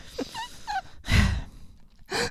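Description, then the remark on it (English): Close, heavy breaths blow straight into a microphone: a loud, rumbling whoosh in the middle and another rushing exhale at the end, after a few brief high vocal squeaks. “I'm, like, breathing on the microphone.”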